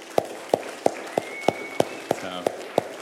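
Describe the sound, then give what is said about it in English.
Steady, rhythmic clapping in a round of applause for Easter weekend volunteers, about nine sharp claps evenly spaced roughly three per second, with a faint thin tone lingering underneath. “And so would you just join me in a round of applause for our Easter volunteers last week?”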